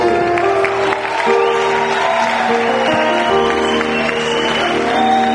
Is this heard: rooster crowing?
no